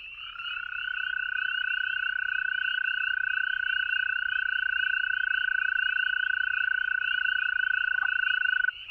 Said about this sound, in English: Well, how about my first American toad of the season, giving its dreamlike trill against a chorus of spring peepers.